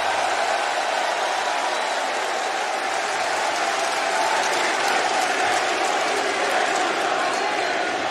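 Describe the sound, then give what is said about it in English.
A large arena crowd applauds and cheers continuously, a dense, loud wall of clapping and roaring voices that holds steady without pause for the whole stretch. “But yeah, that energy from those fans, that crowd, that is something awesome.”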